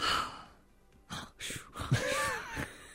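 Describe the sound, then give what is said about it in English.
A person imitates snoring with a series of breathy, wheezing snorts and sighs, irregular in rhythm, some rising into raspy whistling tones. “He's snoring!”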